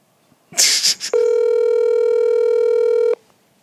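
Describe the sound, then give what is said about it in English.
A short burst of clicks and rustling, then the steady electronic ringing tone of an outgoing phone call holds for about two seconds, loud, with no one speaking; the call goes unanswered. “Let's see if that nigga answer the phone.”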